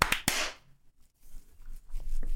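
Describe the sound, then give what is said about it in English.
A quick cluster of sharp hand claps, two or three slightly out of sync, loud and crisp, made on a count of three to sync recordings, followed by a stretch of quiet with faint low background noise. “Should we clap?”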